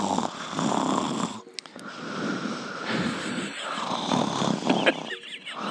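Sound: voice imitating loud snoring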